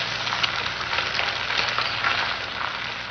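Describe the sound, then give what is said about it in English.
An egg cracked onto a cast iron pan fries with a steady, dense sizzle of crackling hiss that runs unbroken for about three seconds, fairly loud and with no voices over it. “Because cracking an egg on a cast iron pan using an authoritative condescending voice just screams hard science.”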